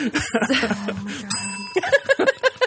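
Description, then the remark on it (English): A small bell rings once with a bright, briefly sustained tone, surrounded by chuckling and bursts of laughter from several people. “I control the bell. I have to control something in my life. Can I just control the bell?”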